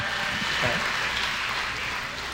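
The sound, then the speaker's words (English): An audience claps steadily for the sponsor Aztec Chevrolet, a dense, even wash of applause that holds at the same loudness for a couple of seconds, with faint voices mixed in underneath. “So give Aztec Chevrolet a big round of applause, our sponsor.”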